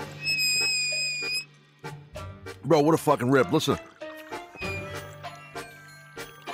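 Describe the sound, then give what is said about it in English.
A water bottle gives off a steady, high-pitched whistle for about a second as water is being drunk from it, then a man speaks over faint liquid sloshing, and a brief whistle returns later. “Okay, that whistle, that's not feedback. That's not your podcast. That's not an audio issue. That's fucking my water bottle.”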